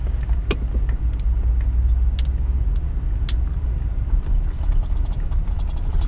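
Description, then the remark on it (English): Steady low road rumble from a vehicle driving in traffic behind a bus, with a constant engine drone and a few brief clicks and rattles on top; no one speaks. “Trying to go, we'll be following a bus here.”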